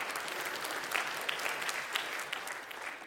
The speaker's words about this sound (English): If one person claps, everybody has to clap. So go ahead.